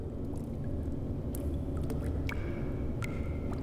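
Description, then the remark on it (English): Someone drinks water, with soft wet sips and a few small clicks over a steady low rumble; no one speaks. “Sorry, I took that opportunity to also take a drink of water.”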